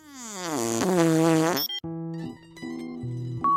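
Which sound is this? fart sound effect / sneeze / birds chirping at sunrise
fart sound effect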